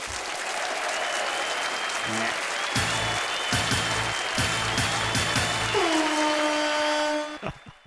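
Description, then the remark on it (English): A crowd applauds steadily as the Ledbetter Guitar Company Dopamine Dual Stage Fuzz is named the winner, with dense, continuous clapping for several seconds, a few brief tonal notes ringing through, before the applause fades out at the end. “Claps.”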